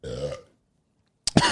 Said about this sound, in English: No, if I burp too hard, I cough sometimes. Sorry for listeners at home.